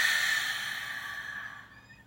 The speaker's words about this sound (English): Let's take a nice deep breath in. Through your nose and out your mouth.